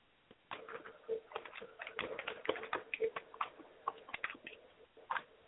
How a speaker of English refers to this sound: Okay, she's typing her last words.